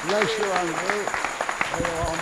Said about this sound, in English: give him a clap.